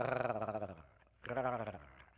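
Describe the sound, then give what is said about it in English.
Two low, raspy growling feeding calls from a duck, each lasting about half a second with a short pause between them, fairly loud, with no talking. “And when you hear a duck give you that message, he's usually feeding. The duck hunters know it as the feeding call.”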